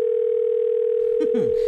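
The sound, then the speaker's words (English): A steady, unbroken telephone tone of an incoming caller to a radio broadcast hums at a single mid pitch for nearly two seconds, with brief muffled voice-like sounds breaking in near the end. “Now we have a caller.”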